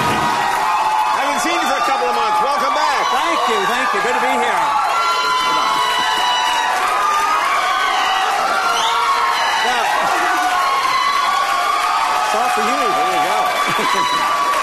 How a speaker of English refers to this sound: And you've never seen this with even Obama in his heyday did not get this kind of crazy hooting and hollering. And the first clip showing this would be Hooting for Paul.